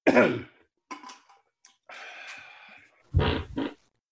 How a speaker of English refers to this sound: I want you to see if you hear the fart before he starts singing.